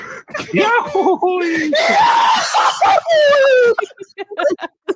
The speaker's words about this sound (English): You know, it is so fucking funny when Goofy yells.